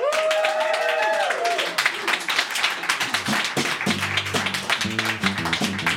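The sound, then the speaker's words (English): A full studio audience applauds steadily and live in the Blue Moon Listener Lounge at the River Studios, welcoming back a band. Dense clapping with a brief voice or cheer early on and low musical tones rising underneath toward the end. “We have a full crowd with us, and we would like to welcome back to the River Studios,”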